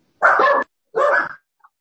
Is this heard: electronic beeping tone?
no